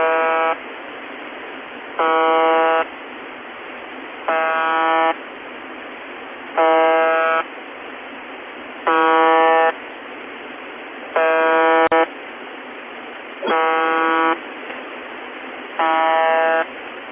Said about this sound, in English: The next one will be the Russian number station. Very popular. I'm sure you've all heard it. It is the UVB-76, also known as the buzzer.